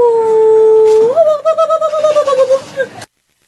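A 10-year-old Pomeranian dog lets out a long, steady high-pitched howl that lifts in pitch and breaks into quick wavering whines, fairly loud, before cutting off abruptly.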